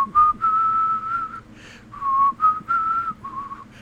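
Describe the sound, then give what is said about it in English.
A clear whistled melody carries a tune in smooth phrases of held notes, some with slight vibrato, over a faint low backing hum, steady in loudness. “The whistling. You barely have to hear it for it to give you goosebumps, especially when paired with documentary images that arch from the rise of the Berlin Wall in 61 to cheering East Germans as it comes down and dancing Soviet soldiers.”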